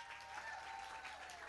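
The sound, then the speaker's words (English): An audience applauds as a children's group comes up to sing, in a steady, dense wash of clapping, many hands blending into continuous noise that holds at an even level throughout, with no voices standing out. “So if you guys would just give them a round of applause as they come up here.”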